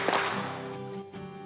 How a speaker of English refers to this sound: Three claps, we're ready tonight. Three claps. Three claps. Three claps.